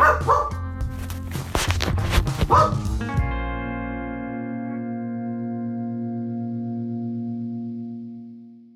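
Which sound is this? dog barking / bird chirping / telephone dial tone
dog barking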